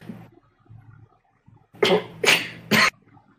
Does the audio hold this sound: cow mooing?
no